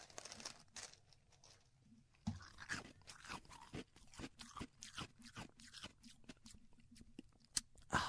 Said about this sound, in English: Okay, close. Pretty close. Chewing ice. Pretty annoying, is it? Yeah. Pretty damn annoying.